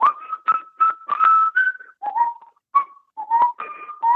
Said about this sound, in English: And so I knew I couldn't sing the words, so I started whistling one of his greatest hits.